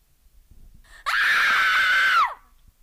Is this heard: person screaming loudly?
yes